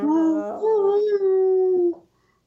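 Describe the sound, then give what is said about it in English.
A person's voice imitates a whale call: one long, moaning tone that wavers, then holds steady for about two seconds before breaking off. It is loud, with nothing else around it. “Summoning a whale.”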